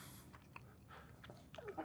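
Soft chewing of waffles topped with blueberries and no syrup, with irregular moist crunches and mouth clicks over a couple of seconds, fairly quiet with no talking.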